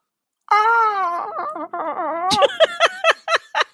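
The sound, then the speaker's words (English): A person imitates a hawk's cry with a long, wavering high-pitched scream that breaks into a run of sharp, rapid screeching yelps, loud and alone with no talking. “You like my hawk noise, guys?”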